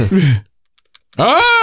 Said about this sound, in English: It has a snap. It's very accurate, it's the NES controller. Yes, it is. Very punchy. It is accurate.